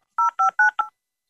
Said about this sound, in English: Sound of a touchtone phone. And dial up. That's what I think he's getting at. There it is. Oh my God. Zoom canceled it out, most of it, but we did hear was it. Was it? Yeah, it was dial up. It's the sound of a modem connecting.